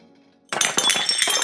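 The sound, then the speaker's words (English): After a brief quiet hum, ceramic pottery crashes onto a hard studio floor, bouncing, clattering and shattering into a burst of bright, ringing shards that keep tinkling and scattering for a moment, loud. “The silence in the room was shattered by the sound of pottery bouncing off the studio floor.”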